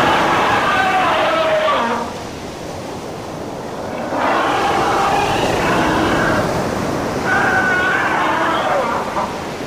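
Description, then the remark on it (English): Three bursts of guttural, barking and groaning cries from monstrous creatures, a few seconds each with brief pauses, loud over a steady rush of surf-like water noise, the tallest creature's calls echoed by the others. “The creature closest to Malavika, the tallest of the monstrosities, let out a series of barking and groaning sounds which were echoed by the others.”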